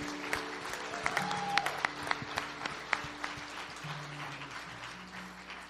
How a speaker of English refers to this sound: In Jesus' name, everybody said a big amen. Amen. Come on, clap for joy, somebody.